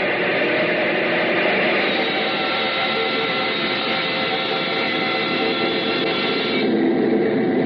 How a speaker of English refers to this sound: Bring up number one engine to maximum RPM. Altitude, 30,000 feet.